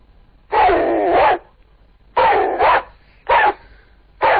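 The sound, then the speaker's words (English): A man's voice imitates an Old English sheepdog, giving four loud, gruff woofs: a long drawn-out one, a shorter one, then two quick clipped barks. “Give us an old English sheepdog.”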